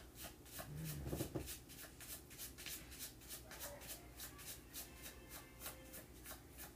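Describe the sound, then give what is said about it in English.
A deck of cards being shuffled, a steady run of quick, soft riffling clicks and rubs lasting several seconds, fairly quiet, with no talking. “They're also shuffling better since you touched them.”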